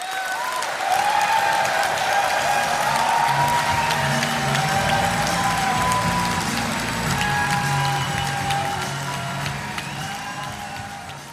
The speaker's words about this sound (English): So I hope you enjoyed that. We have shortened the applause. Obviously, it went on for another 10 minutes or more.